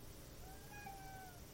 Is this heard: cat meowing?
yes